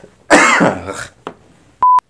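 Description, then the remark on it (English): A loud, raspy throat clearing and cough, followed by a short sharp cough, then a brief electronic beep tone at the end. “Sorry, I'm going to have to cut all this out of the podcast for me coughing.”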